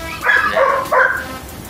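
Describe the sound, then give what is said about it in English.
Two short, loud dog barks in quick succession, the second following about half a second after the first, with a faint hiss of background noise. “That's Browns right there. Barking for his Browns.”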